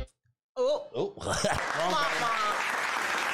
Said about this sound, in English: I'd like to give a shout out to our sponsors. Give them a round of applause, y'all.